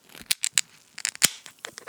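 A foaming beer can being opened: a quick run of sharp, crackly metallic pops and bursts, irregular and bright, with brief fizzing between them and no voices.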